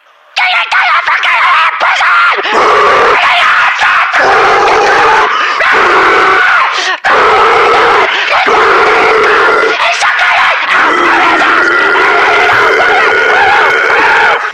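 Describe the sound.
A loud voice performs high-pitched death metal shrieks, sustained and strained, in long raspy bursts with a few short breaks, unaccompanied by any instruments.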